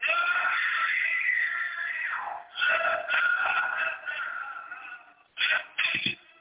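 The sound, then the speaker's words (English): A woman in a movie screams loudly in one long, wavering shriek, then breaks into several shorter bursts of screaming, harsh and slightly tinny, with no talking. “Oh, she's screaming for a while.”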